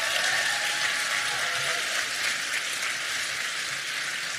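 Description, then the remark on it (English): Steady applause from an audience at a church service for teens who stepped on the stage, a dense, even wash of many hands clapping at once, sustained at a constant moderate level with no voices standing out. “Let's give a round of applause to those teens with the courage to step on the stage and serve God with the full hearts.”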